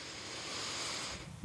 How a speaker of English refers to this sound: And breathing in